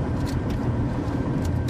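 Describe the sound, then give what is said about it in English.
Steady, loud low-pitched road rumble from inside a car towing a trailer at highway speed on the 407 toll highway, a continuous drone of engine and tire noise with no voices. “We were on the 401 and there were tons of transport trucks and we're hauling a trailer and no.”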